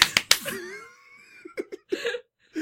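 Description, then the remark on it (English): Two sharp, harsh hand claps in quick staccato succession ring out, followed by a drawn-out vocal tone and a few short voiced syllables. “I think each show theme song should end with the name really, of the show. Like some staccato clapping.”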